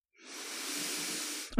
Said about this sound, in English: Sorry, I was sniffing.